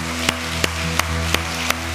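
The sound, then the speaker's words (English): An audience applauds for the people who connected to Jesus that day, in a steady, dense wash of clapping, with a sustained keyboard chord humming underneath and sharp beats landing at an even pace roughly three times a second. “And give a round of applause for the people that connected to Jesus today.”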